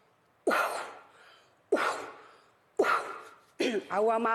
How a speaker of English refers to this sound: For those of you at in podcast land, the coughing you heard, the coughing Indian, she's coughing in three directions, and all. It's part of whatever she is prepping or doing or performing right now.